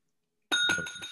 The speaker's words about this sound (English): A bell. You gotta have a bell.